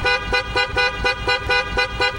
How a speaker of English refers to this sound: There's a lot of horn honking going on there, and I know some folks can be triggered by honking horns.